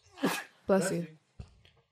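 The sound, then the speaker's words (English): A loud, breathy sneeze: a sharp intake of breath, then a forceful voiced burst, followed by a brief faint sniff or click. “Bless you.”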